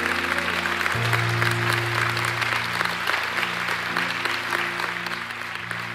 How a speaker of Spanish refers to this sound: Y si es un aplauso para Jesús, un aplauso para Él.